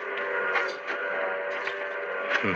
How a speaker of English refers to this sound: The train's coming.